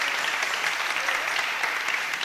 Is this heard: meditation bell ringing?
no